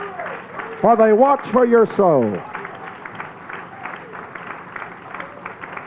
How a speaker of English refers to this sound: Why don't you give your pastor and his wife a real good hand clap of praise? Come on.